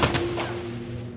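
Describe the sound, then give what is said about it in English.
A quick burst of thunderous gunfire aimed at a Ford car rolling toward the side of a road, three or four sharp cracks in rapid succession at the start, then a low ringing echo that lingers after the shots stop. “The fusillade of gunfire follows it.”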